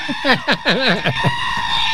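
A goat lets out a short series of loud, wavering screams, several quick bleats running together with a shaky, quavering pitch, with no talking over them.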